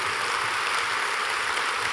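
Steady, dense applause from an audience for a speaker, a continuous wash of many hands clapping at an even level for the full two seconds, with no voices standing out.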